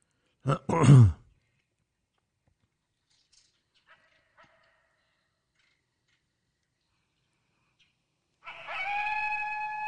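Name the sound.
coyote howling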